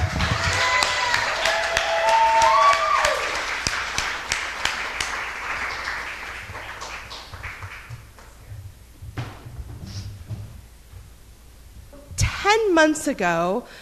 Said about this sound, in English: Ladies and gentlemen, give her a round of applause,